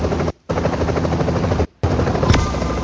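A loud, dense helicopter roar with gunfire mixed in from a video game action scene, played from an online video clip, cut by two brief moments of silence. No one speaks.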